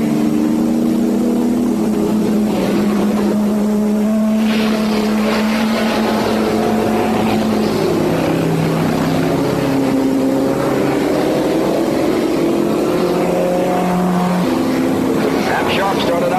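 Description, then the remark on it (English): The engine of a Chevy Chaparral race car owned by Jim Hall, driven by Roger Penske in Nassau Speed Week's biggest race, roars steadily, its droning pitch sliding up and down as it accelerates and shifts, loud and continuous with a rough, buzzing edge. “In Nassau Speed Week's biggest race in a Chevy Chaparral owned by Jim Hall.”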